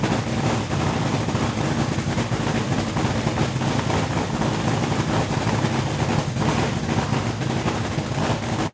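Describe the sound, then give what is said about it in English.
A dragster engine roars loudly and steadily for several seconds, a dense, rumbling drone with no pauses, cutting off abruptly at the end. No one speaks. “I'm just going to put the dragster on for a second, get some water here.”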